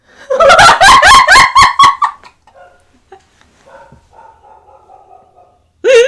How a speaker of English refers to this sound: Now the dogs are barking.